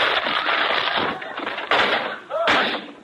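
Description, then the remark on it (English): A loud crash as Costello walks through a radio station door instead of opening it, with splintering, clattering debris in a dense, chaotic burst, followed by further banging impacts. “Just a minute. I'll open the door. Never mind. I'll walk through it.”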